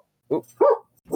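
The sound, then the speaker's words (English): A dog barks three times in quick succession, short sharp woofs, fairly loud, with brief pauses between them and no one talking. “Really, dog?”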